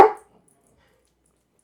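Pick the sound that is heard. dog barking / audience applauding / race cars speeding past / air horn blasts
dog barking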